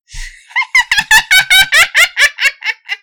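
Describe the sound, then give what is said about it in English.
A voice imitates an eerie cackle heard several streets over, echoing through the streets: about a dozen rapid, high-pitched, breathy laugh bursts in a steady rhythm, loud and alone, with a short hiss at the start. “But you can hear this cackling several street over.”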